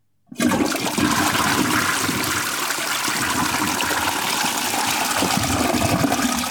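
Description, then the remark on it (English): A loud toilet flush sound effect starts abruptly and roars steadily for several seconds, a rushing gush of water with no voices. “Well, let's get a massive toilet flush sound effect to cap it off, because that's actually all I have to talk about.”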